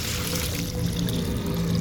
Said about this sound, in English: pour that serum into the bucket. All of it, all the way to the top.